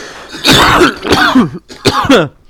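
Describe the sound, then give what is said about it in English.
A loud fit of coughing right after laughter, several raspy throaty bursts in quick succession with short breaths between them, no speech. “Got that laugher's cough.”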